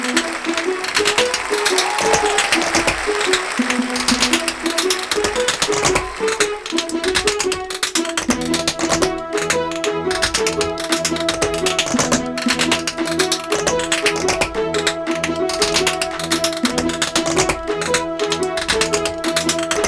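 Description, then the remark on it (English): Rapid, busy tap-dancing clicks from the five tap-dancing Buckettes rattle on without pause, joined partway through by steady tuneful music underneath the sharp taps: the Come As You Are Orchestra, with six-note sleigh bells, playing We Wish You a Merry Christmas. “Five Tap Dancing Buckettes”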